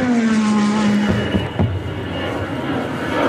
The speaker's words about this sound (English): Airplane noises. He's always got these awesome intro. I love the effort he puts into the intros. He's always got the most killer intros with an airplane noise over them.